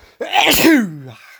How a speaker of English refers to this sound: I'm going to sneeze again.